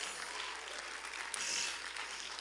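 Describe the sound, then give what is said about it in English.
A church audience claps their hands in praise to God, a dense, continuous wash of many overlapping claps with no clear rhythm, steady and moderately loud throughout, with no voices standing out. “Clap your hands to the Lord and give God.”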